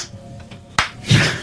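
A sharp, close hand clap rings out, followed a moment later by a second, softer clap, the slow spacing of a lone person starting a slow clap, with no talking.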